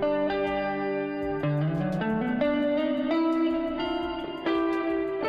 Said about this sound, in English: Setting number two, we're going for a classic digital reverb sound. Sounds... Oh, yeah.